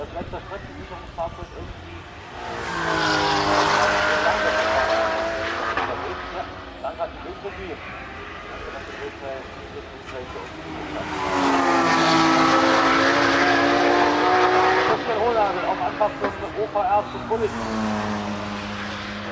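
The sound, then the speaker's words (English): Two race cars roar past one after another at the Nürburgring, each engine note swelling loud, then bending down in pitch as it fades away. “Right, I'm off to watch the cars.”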